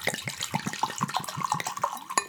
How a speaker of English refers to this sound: I'm impressed by that healthy pour you gave yourself.